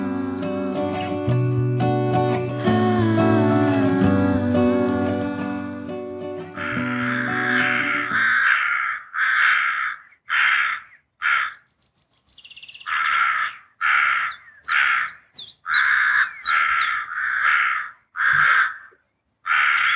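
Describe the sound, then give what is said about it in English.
After an opening stretch of dense, droning tonal sound, a group of crows (corvids), recorded in the suburbs, takes over with loud, harsh caws in rapid, uneven bursts, overlapping and repeating steadily to the end. “I love that, the wonderful sound of a Corvid symphony raining out through the streets all over Britain.”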